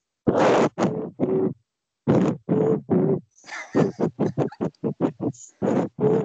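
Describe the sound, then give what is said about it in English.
A throaty, buzzing sound made with the tongue, not whistled, plays the Hot Cross Buns tune: three descending long notes, repeated, then a quick run of short notes, ending on two long ones. No talking. “It's not, I can't whistle. I fully admit that, but I can do this with my tongue.”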